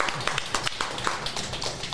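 A small group applauds with steady, irregular clapping at moderate volume, the overlapping claps forming a continuous patter for about two seconds.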